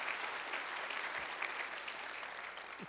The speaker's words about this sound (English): So can we take one quick moment and just give a round of applause to all of our door hosts, greeters, everybody in the lobby that helps make Sundays happen.